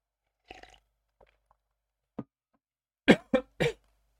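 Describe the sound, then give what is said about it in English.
A few faint throat noises and a short gulp, then three loud coughs in quick succession from someone who choked on a sip of water. “Just coughing on my water, waiting for questions.”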